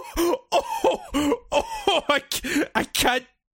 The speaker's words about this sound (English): What the fuck is that sound? That is literally just a fucking burp. Isn't that fucked up?